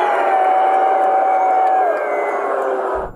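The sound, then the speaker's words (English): A big capacity crowd at MetLife Stadium roars and cheers in a dense, sustained wash of voices, with a few higher whoops and a held tone riding on top before the noise cuts off abruptly. “Oh, the capacity crowd at MetLife Stadium.”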